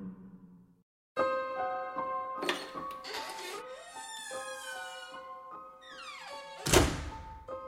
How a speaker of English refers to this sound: As we enter the Premier's office, the eyes on the portrait of Bill Davis follow us, and we hear something banging from behind one of the walls. It's actually in the closet.